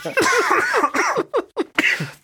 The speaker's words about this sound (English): Oh, God. Making me cough.